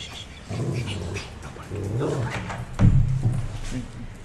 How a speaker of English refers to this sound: He's right there. No barking, buddy. No barking.